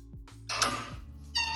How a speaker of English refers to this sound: Oh, cute. It's a cat.